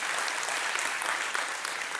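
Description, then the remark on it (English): An audience claps steadily, a dense wash of many hands applauding at an even level for the whole moment, with no voices rising above it. “I mean, you pray, yeah, I'll wait for a clap for that.”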